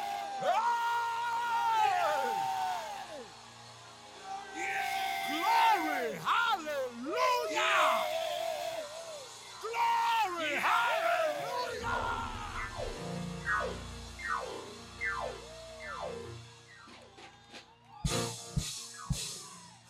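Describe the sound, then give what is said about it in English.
An audience shouts and cheers loudly and continuously, rising whoops and yells overlapping from many voices, with a few sharp percussive bursts near the end. “Okay, so those of you who think we shouted for nothing, wait.”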